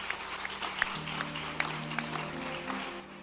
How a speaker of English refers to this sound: Somebody give the Lord a good clap of it.